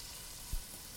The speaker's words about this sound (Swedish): Nu ska jag tillsätta kokosmjölken till grytan. Då kommer det låta lite för att den är stekt ganska hårt här. Och det ligger massor med liksom grejer i botten som jag vill liksom koka bort när kokosmjölken kommer på.